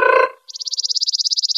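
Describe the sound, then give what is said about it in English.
After a brief hummed tone, a person imitates a bird's trill with the tongue: a steady, rapid run of high-pitched pulses, about fifteen per second, holding an even pitch and loudness. “Another category of bird call you might hear is what's called a trill. And you do that with your tongue.”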